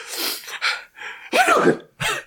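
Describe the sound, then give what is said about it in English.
A person mimics a sneeze out loud, a few breathy, hissing bursts followed by a voiced, wavering "ah-choo" and one final sharp burst, fairly loud. “That's how he comes in when he sneezes.”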